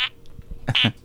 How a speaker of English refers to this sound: I'm sorry, I'm having some bowel troubles tonight. No, we have a leftover fart machine. Oh, he's not finished.